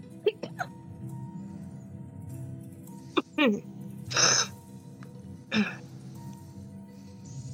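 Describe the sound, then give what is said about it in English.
A person coughs several times in short, harsh bursts: a quick pair at the start, then a few more scattered over the next seconds, with a steady low hum underneath. “This is an actual cough.”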